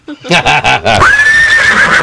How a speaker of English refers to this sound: That's not a pony, though. That's more of a horse. That's a horse.